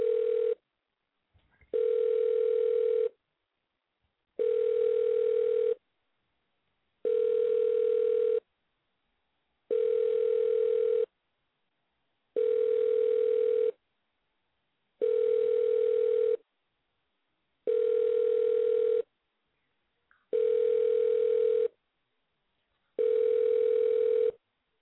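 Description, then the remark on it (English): An outgoing prank phone call rings repeatedly without being answered: about ten steady ringback tones, each roughly a second long, evenly spaced with silent gaps, clear, with no voices. “Okay, we're gonna make this phone call real quick.”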